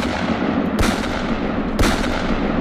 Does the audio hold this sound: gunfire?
yes